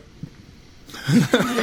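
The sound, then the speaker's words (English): A short, low, guttural burp after drinking Topo Chico sparkling mineral water erupts after a quiet moment, followed by a brief rough voiced tail, with no talking. “Makes your burps taste like lime.”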